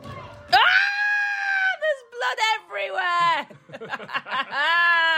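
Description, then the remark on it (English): Several swimmers in a video game scream in panic at a shark attack, loud, high-pitched, overlapping shrieks that rise and fall in long sustained bursts with brief gaps, frantic throughout. “Oh, everyone's screaming. Because you're a shark.”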